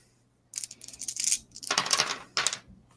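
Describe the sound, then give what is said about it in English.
Dice clatter and rattle across a hard table in three quick bursts, a bright, moderately loud tumbling with brief pauses between throws, and no voices. “Oh no, there's dice rolling.”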